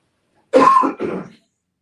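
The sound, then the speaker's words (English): A person clears their throat with a rough cough, two quick harsh bursts back to back, fairly loud, with no talking around it. “Trying to tell you, people be tripping, got me out of here coughing, Lord help you.”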